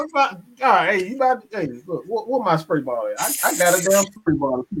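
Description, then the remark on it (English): A man talks animatedly, and partway through a sharp, bright hiss like an aerosol spray bursts out for about a second, apparently voiced by him in imitation of a Raid insecticide spray, before his speech continues. “We got raid for the beehive.”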